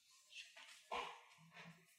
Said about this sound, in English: Yeah. That sounds... Sorry, one second, that's the dogs.